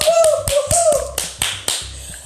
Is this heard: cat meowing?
no